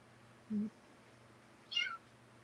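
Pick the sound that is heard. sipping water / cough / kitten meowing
kitten meowing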